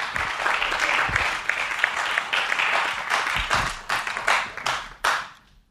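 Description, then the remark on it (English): A crowd claps and cheers loudly for several seconds, dense applause with some whoops, then thins out into scattered final claps before fading to silence. “Yo, make some noise for Premium Pete. Cheer, cheer, cheer, cheer.”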